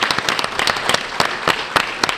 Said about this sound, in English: Hey, everybody, let's get a round of applause for all of our drivers. Everybody did an awesome job.